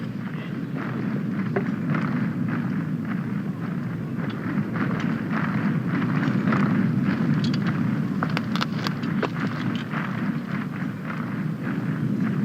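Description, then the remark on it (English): A steady, heavy rumble of a train on rails, overlaid with a dense, ongoing clatter of Zulu spears beaten against shields, forming a continuous thundering roar with no voices. “The sound you hear is the soundtrack of a train on rails combined with the beating of the shields in sync with its”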